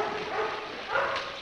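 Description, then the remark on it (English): A dog trapped inside a well barks a couple of times, muffled, while a group of people attempts to rescue it, over a steady wash of background noise with no one speaking. “A group of people is attempting to rescue a dog named Corky, who is trapped inside a well.”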